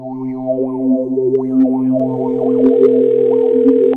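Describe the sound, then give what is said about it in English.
A steady telephone dial tone drones continuously for several seconds, overlaid with wavering, slightly distorted electronic warbles; a second tone joins halfway through, and no one speaks. “This is the phone call that I wish I would have made 12 years ago.”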